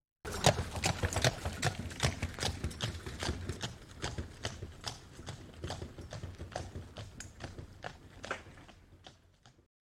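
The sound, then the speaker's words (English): Horse hooves clip-clop in a steady, brisk rhythm on a hard road, fairly loud, with a low rolling rumble underneath as the horses pull a wooden wagon, its bed creaking as it flexes over the crown of the road. “Nathan slapped the reins on the horses' backs and turned them sharply left. The wooden wagon bed creaked as it flexed over the crown of the road.”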